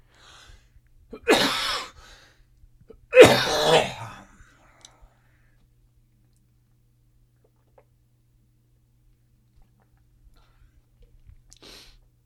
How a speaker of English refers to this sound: I just had a coughing fit and then realized that I did not hit the pause button down. So I apologize to everyone that did hear that.